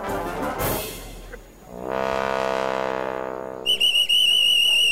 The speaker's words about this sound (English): The whistle is Sandeep, the minister's personal assistant, alerting his team that the ministerial convoy is fast approaching.